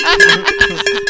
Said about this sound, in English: It's go a cowbell. It's a cowbell. We tie it around his neck so he doesn't get fucking lost.